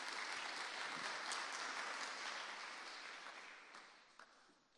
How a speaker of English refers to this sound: All right, thank you very much, Tom. Can we give Tom a big round of applause, please?